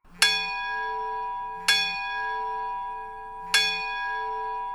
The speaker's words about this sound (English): This is coming from my rather old iPhone. Here's the cathedral bell. And the church bell.